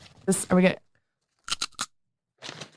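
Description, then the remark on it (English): Someone crunches a crisp, slightly old snack right into a microphone, with loud crackly bites in short bursts: a cluster of three or four quick crunches, then a softer, scratchier chew after a pause, following a brief vocal sound. “Do you listen to that crunch?”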